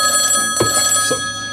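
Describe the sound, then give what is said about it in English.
A telephone rings with a steady, bright electronic tone, fairly loud, with a couple of short knocks or clatters partway through; nobody speaks. “Oh, now my phone's ringing.”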